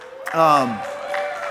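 A short burst of audience applause with a rising whoop of cheering near the start, then the clapping and crowd noise carry on at a softer, steady level.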